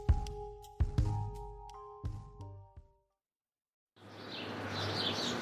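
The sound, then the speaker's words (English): A few plucked, ringing musical notes end in a moment of silence, then outdoor ambience in Cambridge, Massachusetts, at Harvard fades in with birds chirping softly over a steady background hiss. “Ooh, is that the sound of Harvard-educated birds? Yes, yes it is.”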